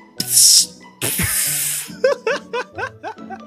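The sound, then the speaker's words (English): A can of shandy pops open with a sharp crack and hiss, then a longer fizzing hiss, followed by a burst of rhythmic laughter. “I'm going to crack mine on mic right now. I'm cracking it now.”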